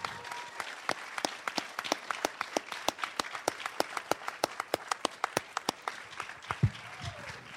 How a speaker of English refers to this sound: Oh, here they come! Everybody, clap! They're walking down right now.